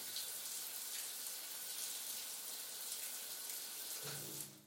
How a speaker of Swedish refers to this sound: Men vattnet blir bara varmare och varmare. Jag börjar få blåsor. Jag står här med nästan kokande varmt vatten rinnande ner för min kropp.